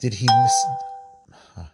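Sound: phone notification chime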